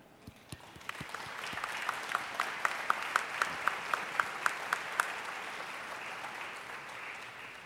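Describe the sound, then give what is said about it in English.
An audience applauds a team being brought out and introduced after a unanimous vote, starting scattered and keeping a steady, full clapping sound to the end, with a run of evenly spaced sharper claps standing out in the middle. No one speaks. “And I think it would be appropriate to give them a praise God and a clap, a hand.”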